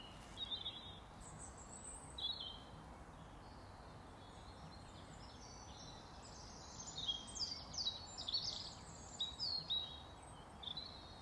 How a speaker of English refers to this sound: And just for a change, rather than walking, I'm sitting on a bench, one of my favourite spots. Just enjoying the birdsong.